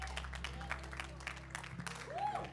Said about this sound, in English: And if you believe that, lift up a mighty shout of praise. Hallelujah. Praise God.